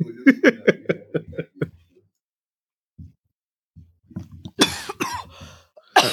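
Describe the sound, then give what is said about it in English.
A few harsh, dry coughs burst out near the end, following a run of short voiced sounds and a brief quiet pause. “You all have that, like, dry cough.”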